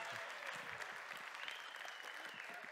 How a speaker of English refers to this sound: But he's here to speak this morning. Would y'all give him a round of applause?